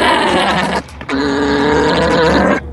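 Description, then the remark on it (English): An alpaca call: two loud, strained, bleating cries with a rich buzzy tone, the first under a second, the second longer and sustained, separated by a brief pause. “I think it was an alpaca.”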